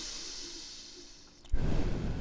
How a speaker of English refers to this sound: Okay, I'm breathing.